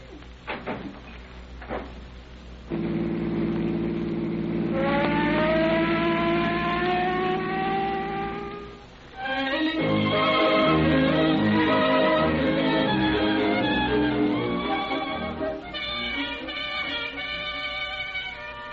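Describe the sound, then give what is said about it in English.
A police car's siren winds up from a low drone into a rising wail, then howls steadily over the rumble of the moving car. It is loud, with no talking. “Will you pull the siren open all the way?”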